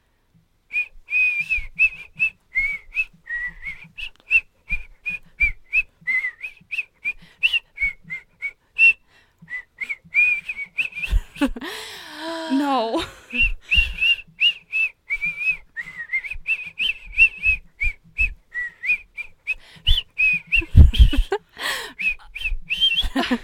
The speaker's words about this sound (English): It's time for Real Good Whistling.